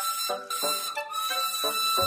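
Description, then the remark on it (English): The whistle of Glynn, a very old red boiler steam engine shaped like a coffee pot and called the Coffee Pot Engine, blows in one loud, continuous shrill blast lasting about two seconds, its pitch wavering slightly as it sounds on its own. “Glynn has a whistle that sounds like this.”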